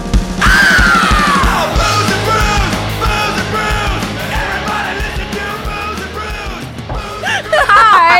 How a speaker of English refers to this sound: Well, you were screaming. I was legitimately screaming gay butt sex.